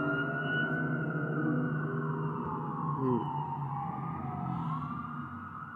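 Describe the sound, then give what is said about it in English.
Several emergency sirens from fire trucks and police cars at a big fire wail at once, their rising and falling tones overlapping continuously, steady and fairly loud, with no voices. “Got fire trucks going on. I hear some police cars and stuff.”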